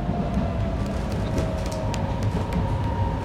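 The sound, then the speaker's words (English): A commuter train rolls along steadily as it approaches Berryessa, the last stop in this direction, its low continuous rumble with a thin motor whine running underneath and occasional sharp rattles and clicks from the cars. “This is the last stop of this direction for this train.”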